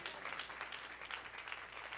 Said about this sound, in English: In Jesus' name, everybody clap your hands and say amen.